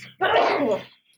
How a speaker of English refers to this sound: Bless you.